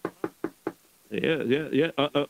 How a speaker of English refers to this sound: All right. Let me knock on his door.